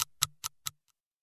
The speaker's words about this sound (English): I've got a clock around here somewhere. Sure I have. I think it's here. Is this the clock? Thank God I found that.